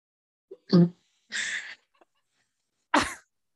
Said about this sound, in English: Were you really just coughing that hard? No, it did. I was coughing, but it wasn't as hard.